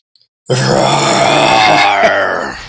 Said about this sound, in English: And by the deep guttural roaring that you can hear at the other end of the line